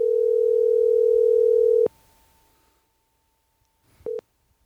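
A steady electronic ringback tone sounds for about two seconds on an outgoing phone call, then cuts off with a click. A pause of line hiss follows, then a brief beep.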